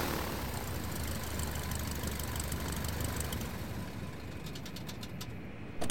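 A plane's engine idles, ready for takeoff: a steady, low drone without a break, a broad rumbling hum with a faint hiss above it, before a brief sharp knock at the very end.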